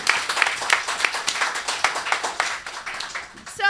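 An audience applauds steadily, many hands clapping at once in a dense, crackling wash that holds at an even, fairly loud level from start to finish, with no voices.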